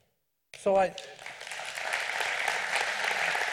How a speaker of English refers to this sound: And that goes to God. That applause goes to God because God gets the glory because it's God that's calling and doing what he's doing.